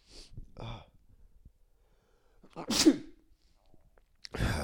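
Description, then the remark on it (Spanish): A single sharp sneeze bursts out after a couple of quick breathy intakes, followed by a brief quiet pause and another short noisy exhale at the end; no one speaks. The person sneezing is in a chilly part of a house in winter. “Me voy y voy a estornudar, perdón.”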